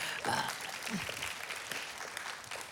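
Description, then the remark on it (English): A church audience breaks into steady clapping mixed with cheers and a few whoops, cheering a camp student reading the book of Exodus; a dense, sustained wash of applause that stays loud throughout. “And yes, we can cheer about that.”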